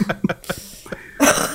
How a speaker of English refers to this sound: So I have a bit of a chest cough right now due to various Texan pollens. And when Ilaria Sand says that line of there's a foreign invasion happening right now, it started a coughing fit that lasted for the rest of the episode.